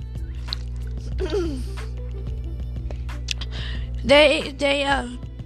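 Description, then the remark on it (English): A speaker drinking water during a break in talking: a short slurp early on, then two louder, wet gulping swallows near the end, with quiet breaths and small mouth noises in between. “Excuse me for my first water break already.”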